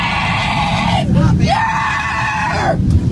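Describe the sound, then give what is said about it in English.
A woman freaking out on a plane screams loudly and shrilly, two long wailing cries separated by a brief catch, over a constant low rumbling drone of the aircraft cabin. “Although her screaming is so loud, it's hard to focus on anything else.”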